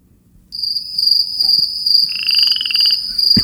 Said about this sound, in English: Apparently, we were going to talk about the dead air we just had. Crickets.